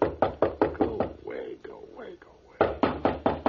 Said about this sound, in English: I'm just going to let him knock.